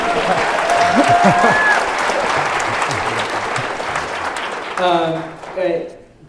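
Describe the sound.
A crowd applauds with sustained, dense clapping and a few cheers and whistles, fading as a voice begins speaking near the end.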